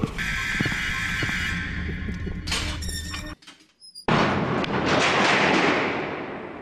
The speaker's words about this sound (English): Oh, yes. I love sitting in the bunker. We're going to have to oil these doors a bit, though.